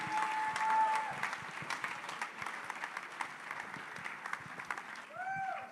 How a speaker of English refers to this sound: Put your hands together. Let's welcome him. Keep clapping.